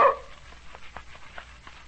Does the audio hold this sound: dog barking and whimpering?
yes